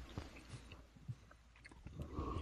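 Crunchy chewing of candy from Canada, with irregular wet bites and crackles spread across a couple of seconds and no talking. It sounds loud.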